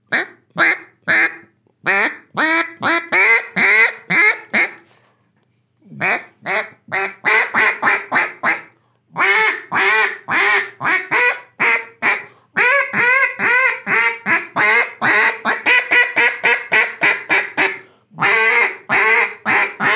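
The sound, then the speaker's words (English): A duck call blown with very little pressure, producing loud, nasal quacks in quick rhythmic runs separated by brief pauses, with no talking. “Like my pressure is not that much different in all of those ducks. And that sounds ducky, right?”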